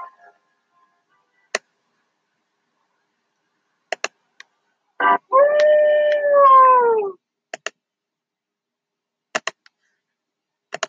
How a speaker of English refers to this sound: Oh, let's do the wolf thing. There it is.